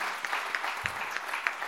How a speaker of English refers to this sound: gonna give the Lord a good clap offering.